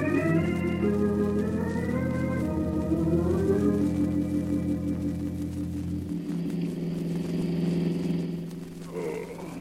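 A car engine drones steadily as the vehicle drives along, its pitch rising and shifting with the gears, loud as if heard from inside, with no voices.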